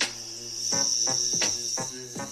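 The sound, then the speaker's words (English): A steady, high electric whine hums continuously like a drone flying overhead, with a buzzing harmonic drone underneath and several short swelling pulses rising and falling through it. No voices. “That's the drone flying around. That's not my voice making that noise.”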